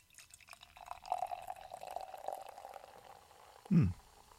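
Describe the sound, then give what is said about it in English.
Beer is poured steadily into a small glass, a gurgling stream rising slightly in pitch as it fills, with faint fizzing throughout. A short, heavy thump comes near the end. “I wonder if they can hear the refreshment as I pour the bubbles out here.”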